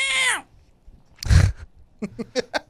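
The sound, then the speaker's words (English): A person imitates the cat pictured on a Wildcat sweater: a short, falling meow-like cry, then a loud, harsh growling snarl, followed by a quick series of choppy vocal bursts. “I mean, that was the sound that looked like the cat would make on the sweater.”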